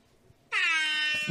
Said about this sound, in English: That just gets a lonely air horn. Single one.